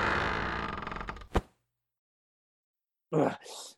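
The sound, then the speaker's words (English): A cushioned door creaks loudly as it swings shut, ending in a sharp thud of the latch, then silence before a short, muffled burst of sound. “Okay, shut the cushioned door on your way out.”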